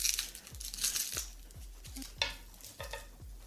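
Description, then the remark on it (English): Crisp crinkling and tearing of a thin, translucent wax paper tube of Necco wafer candies being opened, with bursts of rustle in quick irregular spurts over a few soft low thumps, and no voices. “So it comes in like this nice little wax paper translucent tube here.”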